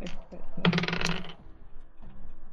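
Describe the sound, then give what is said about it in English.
Dice clatter across a hard tabletop in one quick rattling burst lasting under a second, an attack roll in a game, fairly loud, with faint murmuring voices before and after. “Attack roll, please.”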